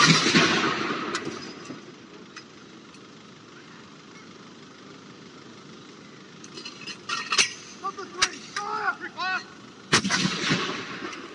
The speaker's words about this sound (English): That is the sound across the United Kingdom this morning, actually, within the last hour. 96 rounds of gun salutes at locations all over the UK. And that is 96 rounds, one for every year of Queen Elizabeth's life.